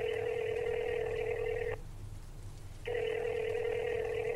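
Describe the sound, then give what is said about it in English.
An outgoing call placed by a man from his phone, ringing through on the line: two long, steady electronic ring tones separated by a brief pause, with a low background hum and no one speaking. “takes out his phone and calls”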